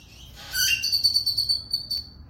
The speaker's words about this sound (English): By the way, we are in outdoors, and we have an onlooker blackbird that you just heard there. It sounds like we're in the tiki room at Disneyland.